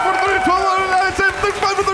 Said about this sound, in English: And the crowd are loving it.